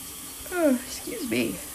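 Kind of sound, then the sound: human body sound, yawning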